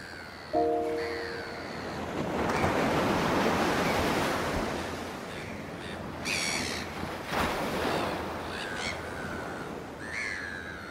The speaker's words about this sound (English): Let's go to the water's edge and see what the ocean is doing today.